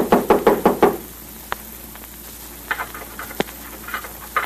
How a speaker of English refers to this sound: Someone knocked. Yeah. How did anyone know we was here?